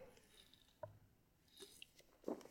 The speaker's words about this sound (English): A bunch of beers, of course. I'm taking another sip of a beer that he gave me, actually.